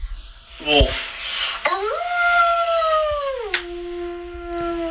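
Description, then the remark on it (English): A girl imitates a wolf howl: a rising, sustained tonal wail that holds steady for a couple of seconds before dropping lower, preceded by a short yelp, fairly loud. “Wolf.”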